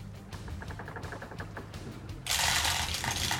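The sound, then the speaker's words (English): Two dice at a time are rolled onto a table, clattering across its hard surface: first a quick series of light ticking bounces, then a louder, noisier rattle as they tumble and settle, with no talking. “He's throwing 2 at a time now.”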